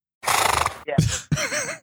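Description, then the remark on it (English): A person imitates a horse's whinny with their voice, a loud, quavering call in three quick bursts, the last one wavering up and down in pitch. “I can't hear the tone, but I hear the horses.”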